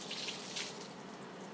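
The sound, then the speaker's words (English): Water runs steadily from a tap onto a dog to cool it down, a soft continuous hiss and splash, with no voices, lasting throughout without stopping. “Okay, I'm going to turn the water off. I am turning the water off.”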